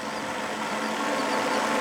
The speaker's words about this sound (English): Whew! These electric scooters slap! I need to get me one!